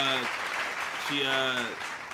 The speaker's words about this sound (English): Hold on, I forgot. Round of applause.